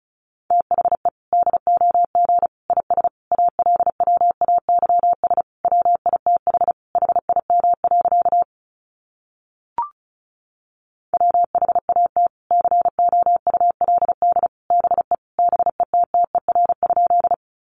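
Fast Morse code at about 35 words per minute sending sentences made from the top 400 words: a steady mid-pitched tone keyed in rapid dots and dashes, two long runs separated by a short pause with a brief blip, no voices.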